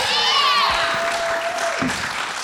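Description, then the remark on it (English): An audience applauds steadily throughout, a dense wash of clapping with a few high whistles rising above it early on. It sounds like a sizeable crowd, consistently loud. “What a way to take the microphone, being like not clapped as being less popular than Bill Shorten.”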